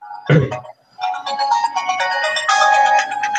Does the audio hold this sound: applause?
no